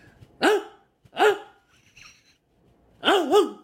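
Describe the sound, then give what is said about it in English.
A person vocally imitates a dog barking as a sound effect: three short, loud, throaty yelps separated by pauses, with the last one a quick double bark. No other talking. “Today I have another sound effect for you guys. This time it's a dog bark.”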